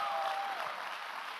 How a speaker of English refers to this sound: So I just want to say thank you, Mom. You've always, yeah, let's just give her a huge round of applause. Yeah! Woo!